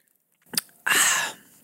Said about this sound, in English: Okay, let me take a little sip of my drink really quick